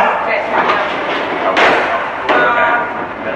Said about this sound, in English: We've got this fire door which slides. Yeah, it's like the door space. Okay, it's got a door cut into it that you might need. Okay. It's got a keyhole.